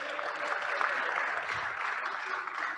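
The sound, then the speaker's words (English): An audience claps steadily for the AV team, a dense, even wash of many hands with no pauses, holding a constant level for the whole stretch with no voices standing out. “Can we hear it for the AV team?”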